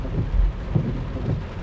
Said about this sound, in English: Oh my god, that was bad. That was some bad rain.